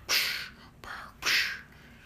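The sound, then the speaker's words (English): A voice imitates Darth Vader's heavy, mechanical respirator breathing: loud, hissing inhale and exhale rasps in slow succession, with no talking. “And, like, he's looking at, like, all this destruction, but you just hear him breathing.”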